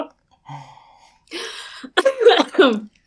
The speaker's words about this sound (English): Bless you. Was that a sneeze?